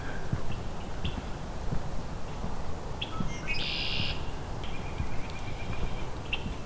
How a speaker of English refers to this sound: This is both common grackle and red-winged blackbird calling.